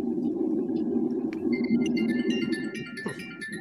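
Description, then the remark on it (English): A steady, strong wind roars throughout while wind chimes ring in after the first second or so, scattering several high, sustained metallic tones over the rushing noise. “A strong wind blowing in the background somewhere. Wind chimes.”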